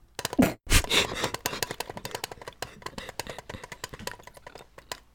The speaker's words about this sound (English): Okay. Here, I'm tapping on a tin container.